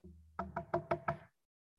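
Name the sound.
knocking on a door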